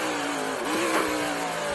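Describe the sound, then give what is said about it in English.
A loud race car engine roars, its pitch dipping and then climbing again as it revs hard, like a car braking and accelerating through a corner, with no voices: a race car coming up to the horseshoe turn on its final lap. “doing a great job here as he comes up to the horseshoe for the final time.”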